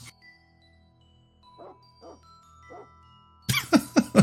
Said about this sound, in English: Oh, that's funny. The dog barked when he did that.